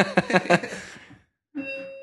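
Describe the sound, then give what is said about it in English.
A home doorbell rings: a quick run of bright chime pulses fades out, then after a short silence a steady electronic tone sounds. It is clear, with no talking. “And there's my doorbell.”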